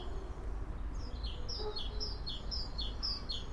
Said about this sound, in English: So what can we hear right here? We're standing outside the cats and dogs home. We can hear the river, we can hear lots of birds. Don't ask me to identify birds, that's an ecologist's job.